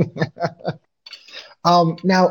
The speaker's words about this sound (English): Who's peeing? I'm doing my dishes.